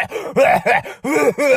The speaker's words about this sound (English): Coughing everywhere